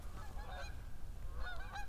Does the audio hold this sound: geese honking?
yes